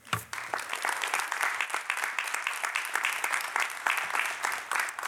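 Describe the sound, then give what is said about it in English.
Sustained applause from an audience as UIS Chancellor Janet L. Gooch and Rotary Club of Springfield Sunrise President Laura Carmody come to the stage at a This I Believe event, many hands clapping in a dense, steady wash that holds at an even level throughout, with no talking over it. “So as they come to the stage, please give them a round of applause.”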